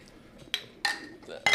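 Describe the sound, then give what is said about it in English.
Drinking glasses clink together in a toast, three bright ringing chinks spaced unevenly over a second, fairly loud, with faint murmuring voices in the background. “Cheers up, boys! It's a drinking podcast, a drinking stream.”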